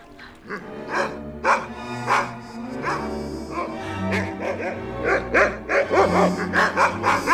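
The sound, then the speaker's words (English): A woman's voice imitates a dog at a man, letting out a string of loud yaps and barks in an uneven rhythm, coming faster and more yelping toward the end, over a low background hum. “And then she hops up and then all of a sudden she starts barking and you just see his face just like just so grossed out by the fact that she's barking at him, and then it's reminding him.”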